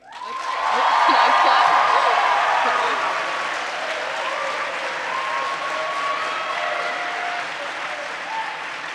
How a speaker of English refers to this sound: So, if you thought the best debating was done by the affirmative University of Nebraska team, please clap and cheer.